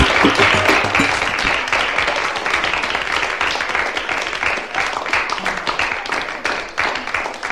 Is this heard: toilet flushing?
no